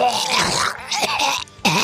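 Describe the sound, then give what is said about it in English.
A loud, breathy sneeze bursts out in a rough, throaty rush, then a short catch and a brief pause before a final harsh gust of breath. No words are spoken. “Bless you.”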